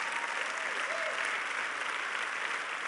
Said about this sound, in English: Come on, let's applaud that.